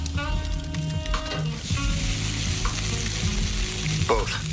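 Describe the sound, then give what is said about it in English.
A giant steak sizzles on a grill in a TV commercial for 7 Up 10: a steady crackling hiss that swells after the first couple of seconds and holds on, with low humming tones and a few brief chimes underneath. “But then he's going to pull a giant steak out of the fire because it's a romantic night for her, but it's grilling time for him.”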